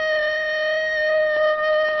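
A wolf howls in one long, unbroken tone, holding a steady, fairly high pitch for about two seconds with no voices around it.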